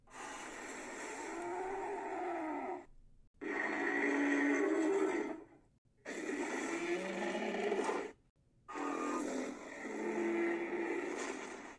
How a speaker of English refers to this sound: The voice of the Mosasaurus in Jurassic World was made by mixing walruses to give her weight and whales